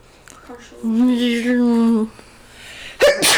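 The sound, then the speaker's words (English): A sneeze: a drawn-out, voiced "ahh" builds for about a second, then after a short pause comes one sharp, loud, breathy burst. “Bless you.”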